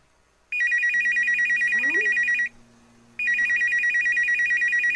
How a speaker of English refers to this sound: the phone rings, and then it's like, it rings a couple of times, so you'll only hear it once here, and then she says, the phone,